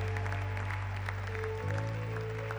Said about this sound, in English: Church, we can clap better. These are brave. Whoever gives their life to the Lord is a brave person.